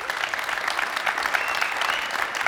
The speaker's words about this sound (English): Give him an applause, please.